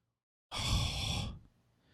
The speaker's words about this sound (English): I'm like breathing right into this mic. This is very fun. This is very fun for me.